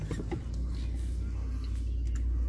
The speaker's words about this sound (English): Guy in one of those little friggin' beater cars. Tiny car with a fucking no muffler. There he goes again.